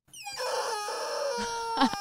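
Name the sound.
rubber chicken toy squeaking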